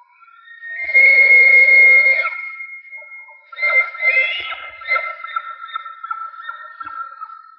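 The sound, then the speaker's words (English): A bull elk bugles: a loud, eerie high-pitched whistle that rises and holds for a couple of seconds, then breaks into a longer run of wavering squeals and rhythmic grunting chuckles. “You know, I've got my harem here and it's a really eerie sound.”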